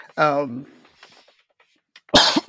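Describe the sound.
A short voiced sound is followed by near silence, then one loud cough bursts out at the end, harsh and breathy.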